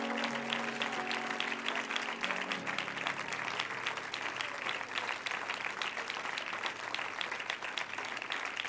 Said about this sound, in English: Why don't you clap your hands and thank God right now?